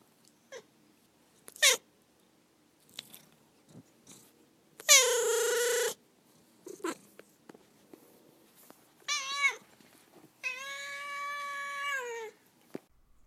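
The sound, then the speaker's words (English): A male cat named Duarte meows several times, with short chirps early on, then a long strained yowl and a final drawn-out harmonic meow, separated by brief quiet gaps. “It's time for Duarte's Corner, where my cat Duarte shares his opinion.”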